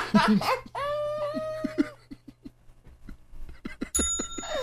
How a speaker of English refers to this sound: Oh, my motherfucking bell.